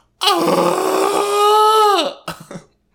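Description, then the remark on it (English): A person imitates wailing and sobbing: a loud, sustained moaning wail lasting nearly two seconds that sags in pitch at the end, followed by a couple of short, choked sobbing gasps. “What if I wailed and sobbed like this?”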